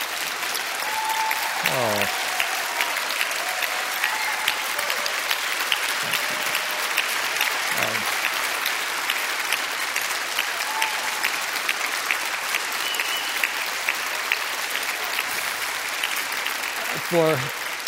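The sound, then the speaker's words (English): A church audience applauds warmly and steadily for a scripture reading, dense clapping throughout, with a few brief voices calling out over the applause. “For anyone visiting here and saying, I've never seen a church applaud for scripture as much as that, I got to tell you what's happening.”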